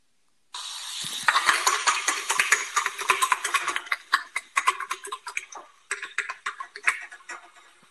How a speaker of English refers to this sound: No, it is, in fact, a horse. What? That's not a horse. Oh, yeah, the feet going.